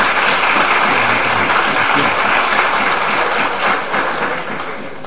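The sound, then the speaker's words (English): A crowd applauds steadily, a dense, loud wash of many hands clapping that holds for about four seconds before easing slightly toward the end, with no voices over it. “Applaud her and pay attention to my answer.”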